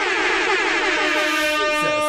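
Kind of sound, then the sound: signal or alarm, air horn blasts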